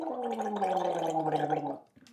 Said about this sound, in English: You're gargling your water. To play for. It's good for you. You're gargling your crisp water.